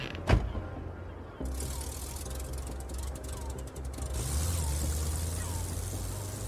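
A single sharp thud like a car door shutting, followed by an engine turning over and settling into a steady, close low rumble with some rattling.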